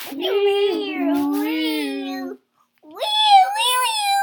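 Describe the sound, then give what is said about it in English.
A child's voice, asked to say it loud, imitates a siren with two loud, sustained wailing tones: the first long and gently wavering, then a short pause before a second wail rises in pitch. “Then they heard a siren. What did it sound like? Say it loud.”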